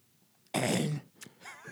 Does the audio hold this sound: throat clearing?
yes